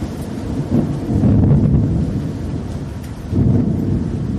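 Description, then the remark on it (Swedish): A fierce thunderstorm as clouds gather, with deep, rolling rumbles of thunder that swell, fade briefly, then surge again, with a steady wash of rain or wind noise underneath and no voices. “för molnen hopas och ett fruktansvärt åskoväder dundrar igång också.”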